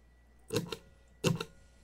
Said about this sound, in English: Let me try my eighth attempt at manually typing in this password.